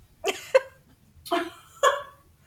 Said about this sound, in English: I'm just letting my breath settle down after running up the stairs.